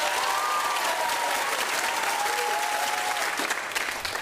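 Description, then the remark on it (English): A crowd votes by applause for the idea most deserving of a trophy, breaking into sustained applause, a dense, steady wash of clapping that stays loud throughout, with a few faint whistles or cheers rising above it. “By applause, ladies and gentlemen.”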